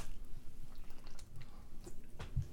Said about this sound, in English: Hold on. Let me take a sip for this.